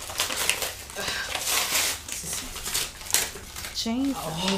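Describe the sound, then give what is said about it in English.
Busy crinkling and rustling of an iridescent plastic zip-up pouch being pulled from its packaging, with sharp crackles throughout and a voice briefly speaking near the end. “So what we just pulled out, for those of you who can't see, is like this iridescent plastic zip-up pouch”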